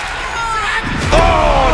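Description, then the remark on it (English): A wrestler is power slammed onto the ring mat with a loud, booming thud, followed by a second impact and a roaring crowd reaction over a steady arena din. “Oh, power slam!”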